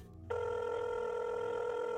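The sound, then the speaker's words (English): A telephone rings as a call is placed, with a steady electronic tone that starts after a brief moment of quiet and holds unbroken to the end, fairly loud, with no voices. “she reached over and grabbed the phone and called Ken”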